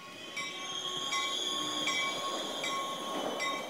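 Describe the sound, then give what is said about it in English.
A train rolls into the station in Padova with a steady rumble, its wheels and brakes letting out high metallic squeals as it slows to a stop; no voices. “By the time their train pulled into the station, Maria and her friends were excited to see Padova”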